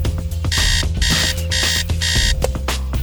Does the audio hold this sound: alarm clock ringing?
yes